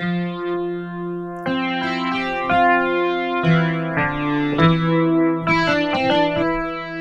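Four layered synth sounds played as chords through a Waves Factory rotator effect, giving a swirling, wobbling rotary-speaker modulation, with sustained tones shifting every second or so, loud with no voices.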